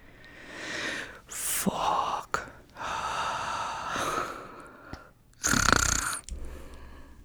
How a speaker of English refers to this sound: Are you growling at me? I was snorting.